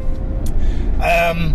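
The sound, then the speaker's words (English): Steady low rumble of road noise inside a moving car, continuous and fairly loud throughout, with a brief higher tonal sound rising over it near the end. “It'd technically be illegal if there was, because I'm driving.”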